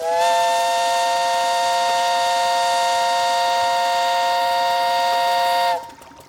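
The steam whistle of the Adirondack Experience's steamboat at Blue Mountain Lake in the Adirondacks blows one long, loud, steady blast for nearly six seconds, a rich chord of harmonic tones, then cuts off abruptly, leaving a brief hiss. No one speaks.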